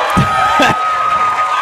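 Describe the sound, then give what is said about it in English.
A brief, loud crowd 'aww' sound effect, many voices blending into a sustained, sympathetic groan that fills the short clip without pause. “It's kind of a weird aww.”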